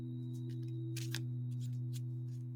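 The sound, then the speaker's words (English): A deck of cards is shuffled in a few quick papery riffling bursts, loudest near the middle, over a steady low electrical hum. No one speaks. “Let's get the cards out. I'm going to do them a shuffle.”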